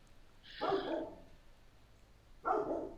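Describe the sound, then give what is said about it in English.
A dog barks twice, a longer bark followed by a short pause and then a second, sharper one, moderately loud against a quiet background. “Okay, let me start over, because my dog started barking and he might have been a distraction.”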